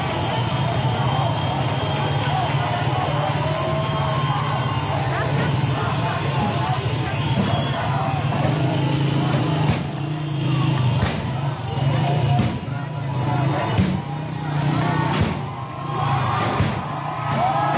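Loud, irregular bangs of people striking a police car ring out several times over the second half, rising above a constant roar of crowd and street noise.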